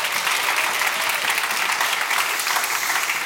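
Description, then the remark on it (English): A crowd claps steadily throughout for a preacher about to preach, a dense, even wash of many hands with no pauses and no one speaking over it. “you guys can clap for him one more time”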